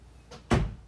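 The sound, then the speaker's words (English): A single solid thump of a person closing their door, preceded by a faint brief rustle or latch click, with a low resonant body that fades quickly into quiet. “Let me close my door.”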